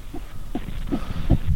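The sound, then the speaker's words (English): The heartbeat of an unborn baby girl on a hospital monitor during labor: quick, steady whooshing thumps, about 156 beats per minute, about four beats in under two seconds, heard clearly over a constant low static hiss with no talking. “and we're waiting on our daughter, and here's her heartbeat.”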